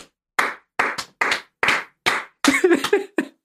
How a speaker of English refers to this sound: So before we move on with our show, let's applaud those who did it first.